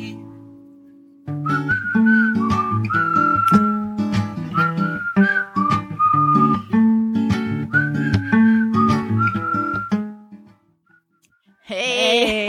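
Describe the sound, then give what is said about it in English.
A bright whistled melody in a theme song rides over an upbeat instrumental accompaniment, its clear tune running steadily for about ten seconds before the music fades and another sound briefly begins. “I love the whistling.”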